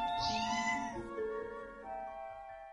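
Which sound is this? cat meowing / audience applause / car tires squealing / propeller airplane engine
cat meowing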